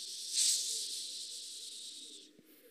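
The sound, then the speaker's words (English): A person hisses like a snake, one long steady sss that swells at the start and holds for about two seconds before cutting off, moderately loud. “They all sounds like snakes.”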